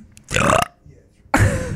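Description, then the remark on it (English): Two loud burps, each lasting under half a second, separated by a short pause, with the second one trailing off at the end. “No, like people get sick listening to the intro when it's you burping.”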